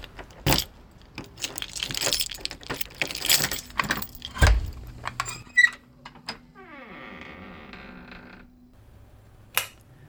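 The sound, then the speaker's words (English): A ring of keys jangles in several bright metallic bursts, followed by a sharp clunk of the lock and a long, wavering creak as a heavy basement door swings open, ending in a faint click. “would you mind opening up the basement door?”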